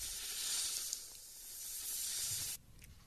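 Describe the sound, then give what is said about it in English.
A loud, sustained snake hiss fills the space with steady breathy noise for about two and a half seconds, then cuts off abruptly, leaving a faint low rumble. “All right, let's snake it”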